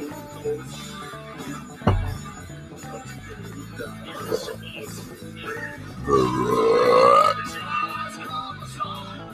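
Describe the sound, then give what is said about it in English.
A loud, drawn-out burp with a wavering, rising pitch rings out partway through, over steady background music with a sharp thump just before it. “That was a perfectly cued verb. Expulsion of gas.”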